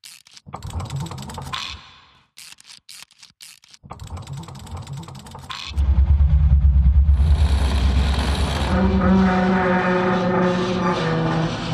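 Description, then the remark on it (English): Bursts of mechanical clanking and ratcheting clicks give way to the engine of the bus Princess roaring to life, a loud, deep, labored rumble that grinds on steadily as it strains to move while towing a trailer with a crawler vehicle chained to its back. “Struggling against the weight, Princess finally begins to move.”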